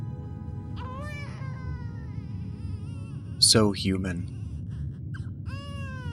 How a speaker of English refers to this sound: The priestess takes the baby from Amanda and holds it up. The tiny infant kicks and cries. Amanda reaches out for her child, but the priestess turns and presents the crying baby to Sarek instead.